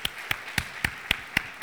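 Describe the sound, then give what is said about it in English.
An audience claps for the Lord together in a steady, quick rhythm: seven sharp unified claps about a quarter second apart, with no talking over them. “How many of you can clap for the Lord?”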